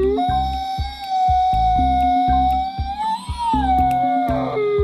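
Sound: wolf howling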